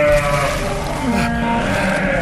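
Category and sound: animal, goat bleating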